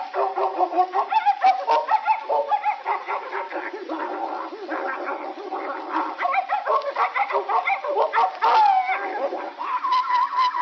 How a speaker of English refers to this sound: Look at him. Ah, look at him. Look at him. My dog wins the fight.